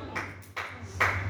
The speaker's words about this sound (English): Praise the Lord. Thank you for that clap.